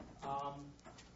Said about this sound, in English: Try and keep talking as long as the chairs are coming out.